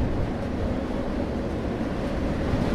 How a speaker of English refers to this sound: I sleep for about an hour before waking to the brakes. The train clicks onto a sided track and rolls to a stop.